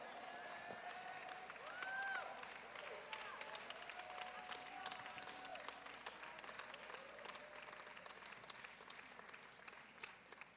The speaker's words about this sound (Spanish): That was the poorest clap offering for the greatest God I have ever heard.